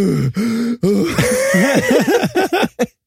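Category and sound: vocal imitation, imitated heavy breathing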